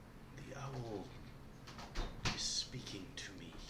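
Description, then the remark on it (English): A person voices a low, cooing hoot in imitation of an owl, a short drawn-out call, followed by breathy, whispery vocal noises. “And now I'm going to message Cantrip the owl hoot into his own head.”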